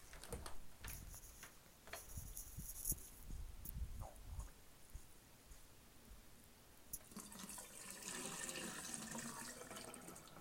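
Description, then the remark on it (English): Water is dumped out of water bottles to clean them, after a few hollow clunks and taps, building into a steady splashing pour that fills the last few seconds. No one speaks. “I need to dump this up. Dump this out and you get all these water bottles cleaned.”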